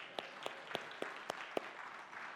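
A round of applause: a steady wash of clapping with about six sharp, louder claps standing out in an even, quick rhythm. Nobody speaks.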